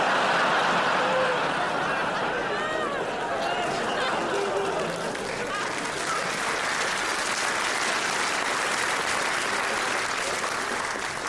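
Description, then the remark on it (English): Sustained audience applause for a story told by Phil Wang in a show streamed on Netflix, a dense, steady wash of clapping at an even loudness, with scattered cheers and laughter mixed into the crowd noise. “Just think about the story you just applauded.”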